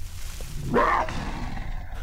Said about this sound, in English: Did you hear that? What? Just a second ago. It was a shriek, a wild animal or something. Maybe it was one of those demons from my paintings.